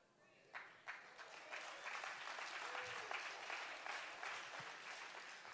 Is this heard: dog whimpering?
no